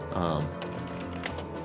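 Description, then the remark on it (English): Scattered clicks of typing on a computer keyboard inside a pickup truck, a few sharp keystrokes, heard beneath a person talking. “I'll mute my keyboard.”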